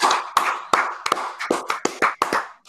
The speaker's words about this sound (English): Let's do this. Clap it up. Let's go. Come on.